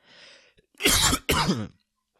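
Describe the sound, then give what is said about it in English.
A soft throat-clearing rasp followed by two loud coughs in quick succession, harsh and dry, from a dry throat, with no talking. “My bad, people, dry throat.”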